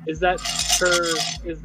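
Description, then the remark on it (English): A bright clatter of six-sided dice tumbling and rattling across a table, with several quick knocks over under two seconds, as hit dice are rolled in a tabletop game. “You can roll as many of those as you like, and you can stop whenever you want.”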